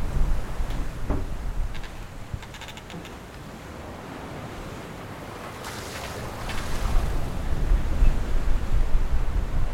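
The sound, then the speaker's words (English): Water from high waves surges and splashes across a ship's deck in rough, irregular bursts over a steady low rumble of engine and wind, the wash building louder toward the end with no one speaking. “You can hear the water splashing over the decks.”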